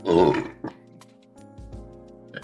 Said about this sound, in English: I'm about to burp real quick. Hold on.